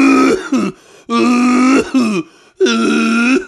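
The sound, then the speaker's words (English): A voice makes a series of loud, deliberate throat-clearing sounds, three long drawn-out rasping bursts with a shorter one between, exaggerated and theatrical rather than a natural cough. “Well, that's performative coughing, dude.”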